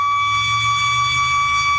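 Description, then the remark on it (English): A loud, steady high-pitched ringing whistle in a West Forest Grove neighborhood holds one unwavering tone throughout, with a layered shrill overtone and a low rumbling hum underneath. No one speaks. “The high-pitched ringing noise is causing quite a stir in this West Forest Grove neighborhood.”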